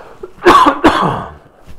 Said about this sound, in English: Forgive me, I need to cough a little bit. And I don't want to undo all of this, so cover your ears for a second.